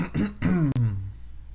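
A deliberate throat clearing: a short raspy burst, then a low, gravelly voiced rumble that slides downward and fades, with no talking around it.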